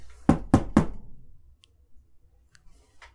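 Three loud knocks as if on a door, struck in a quick, even rhythm, followed by near silence with a few faint clicks.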